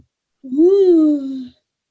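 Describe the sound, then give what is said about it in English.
A single voiced yawn lasting about a second, its tone rising quickly and then sliding slowly downward before trailing off. It is fairly loud, with no talking over it. “I'm yawning.”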